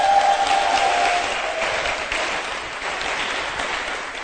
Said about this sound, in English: Let's clap for our pastor as he comes.